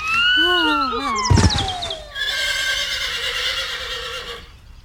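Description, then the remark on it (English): A horse gives a loud, wavering whinny, then a sudden heavy crash as a woman falls off the horse, followed by a few seconds of steady, ringing tones that fade out. “Egad, she's fallen off her horse.”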